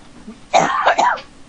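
A pair of harsh, chesty coughs in quick succession, fairly loud, with nothing else but faint room noise around them.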